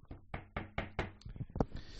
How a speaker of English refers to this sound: Knocking. You're gonna have to do that one.